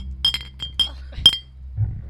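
household object, glasses clinking

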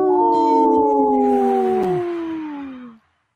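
animal, wolf howling

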